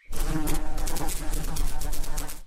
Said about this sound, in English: I mean, you humans like to have insects buzzing around your heads, right?